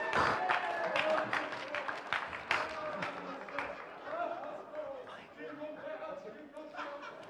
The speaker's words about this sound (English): So can I invite my special guest today to bring this special symbol all the way from the North Pole. Give it a round of applause for Santa, everybody.